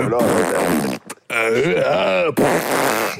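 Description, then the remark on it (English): Loud, buzzy fart noises in three sustained bursts separated by brief gaps, with wobbling pitch that sounds like a voice imitating flatulence. “Shitting and farting.”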